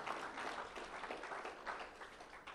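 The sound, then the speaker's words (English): An audience breaks into sustained applause, a dense, steady wash of many hands clapping at once with no voices standing out above it. “It's a great place for an applause and an amen because we love the Lord.”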